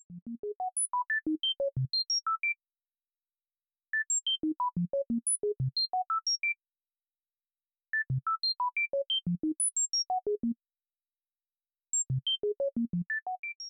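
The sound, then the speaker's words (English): A simple musical neuromodulation sequence for tinnitus: short electronic beeps hopping between low and high pitches, played in four bursts of about two and a half seconds, each separated by a brief silence. No voices. “Okay, so to me, it sounds like a lot of beep, beep, beep, boop, boop, beep, beep.”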